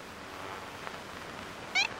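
A single short, nasal honk from an ivory-billed woodpecker, in a 1935 recording made by the founder of the Cornell Laboratory of Ornithology, pops out near the end over a steady wash of static hiss, faint like an old field recording.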